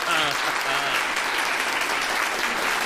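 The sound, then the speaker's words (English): A large audience claps steadily and loudly, a dense wash of applause for a few seconds with a faint hint of voices underneath. “Can we have a round of applause”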